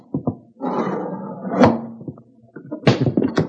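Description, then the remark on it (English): A window of a house is forced open to get inside, a long grinding scrape of wood building to a hard thunk, followed by a few louder knocks and rattles. No one speaks. “We get in somehow with as little fuss as possible. Well, we will just try this window.”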